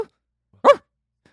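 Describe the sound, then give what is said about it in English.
A single short, fairly loud bark from Turbo, a dog, rings out, surrounded by near silence with only a faint trailing sound at the start. “Oh, I hear him. Well, you heard that?”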